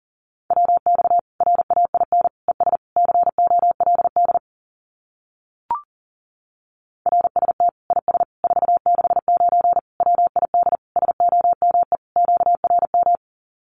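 Rapid Morse code at about 40 words per minute sending common amateur radio QSO phrases, a single steady mid-pitched tone keyed in quick dots and dashes. Two long runs of sending are split by a short pause and one brief click.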